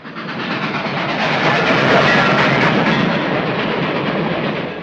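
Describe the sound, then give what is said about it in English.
A train, number 7, rolls along the rails with a loud, steady roar of clattering wheels and rushing noise, continuous for several seconds with no one speaking. “Brisbane Coe, not aboard this train. Wallace, conductor, train number 7.”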